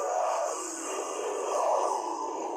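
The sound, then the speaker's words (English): A zombie sound effect: a dense, unbroken wash of groaning and rasping noise that holds a steady, fairly loud level for a few seconds, with no clear speech. “Or if you just want zombies to you know, be at your door.”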